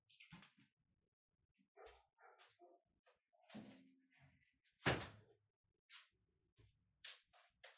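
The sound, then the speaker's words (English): A door is pushed shut with one loud, sharp thud near the middle, surrounded by quieter scattered knocks, shuffling and dogs barking. “Hang on, let me shut my door.”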